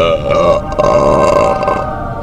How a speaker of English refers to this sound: Number two. Was that a belch?